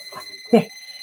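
A thin, high-pitched electronic alarm tone from a clock hanging on the wall rings steadily throughout, fairly quiet, while a person speaks briefly over it.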